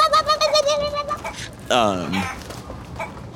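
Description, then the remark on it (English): A voice imitates a chicken darting through people's feet, with a quick run of short, nasal clucks followed by a louder, drawn-out squawk that slides down in pitch. “Chicken is darting through feet, going...”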